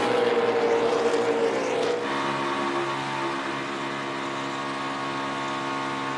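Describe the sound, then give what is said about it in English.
Loud, roaring NASCAR stock car engines race past on a track as the cars come to the white flag with one lap to go, a sustained droning whine, the pitch dropping sharply about two seconds in as cars pass, then a steady engine roar continues with no voices. “They're coming to the white flag, one to go”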